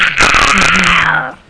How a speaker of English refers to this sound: Ooh, nice monster burp. And lay off the monster.